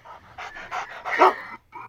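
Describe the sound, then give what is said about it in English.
A dog pants rapidly in a steady run of short, breathy huffs, with a brief high whine mixed in near the end before a pause and one more breath, heard during a run. “And probably it's a dog?”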